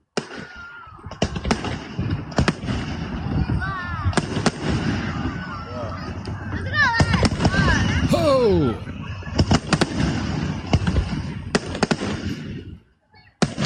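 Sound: fireworks exploding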